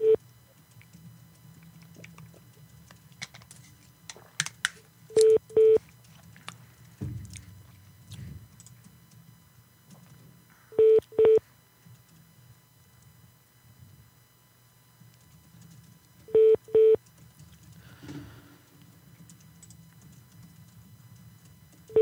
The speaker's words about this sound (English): How long are you going to put a celebrity on hold?